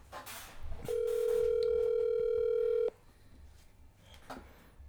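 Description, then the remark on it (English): A phone line rings once: a single steady, mid-pitched electronic tone held for about two seconds, then cut off, leaving quiet background noise with no talking. “I could tell by the way the phone's ringing.”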